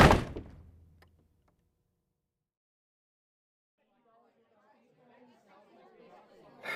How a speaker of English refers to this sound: The Fulcrus's boots on the wooden panels were the only response I had before the slam of the door.